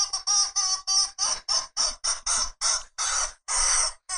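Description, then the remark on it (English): A chicken squawks in a rapid run of about a dozen harsh, raspy bursts, loud and evenly paced, with no talking over it. “Stop with the pig and the chicken.”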